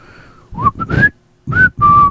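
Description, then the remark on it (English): A short whistled melody from the video game Tom Clancy's Splinter Cell, once on GameCube: five or six clear notes in two quick phrases, rising and sliding between pitches, fairly loud with no talking. “You know what that's from? A game that they don't have. They had it for GameCube.”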